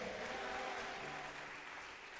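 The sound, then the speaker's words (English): An audience claps their hands together during a sermon, answering the preacher's call to clap, in a dense, continuous burst of applause, steady and loud for a couple of seconds with no voices standing out. “Somebody clap your hands better and shout a bigger amen.”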